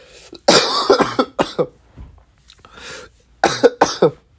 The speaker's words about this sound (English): That's 10, by the way. That's 10 coughs, I think, or clearing my throat. We're gonna combine them.